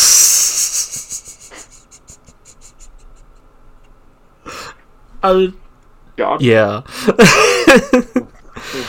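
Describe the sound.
A couple of short, croaky burps come through close up after some scratchy rubbing, followed by talking and laughter.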